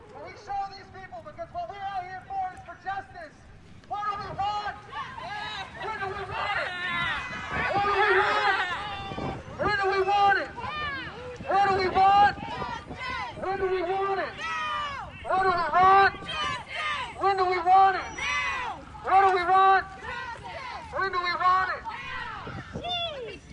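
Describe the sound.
A dense crowd of many voices shouting and calling out together outdoors at a Black Lives Matter protest in Austin, Texas, loud and continuous, with rising chant-like bursts that swell and fade throughout.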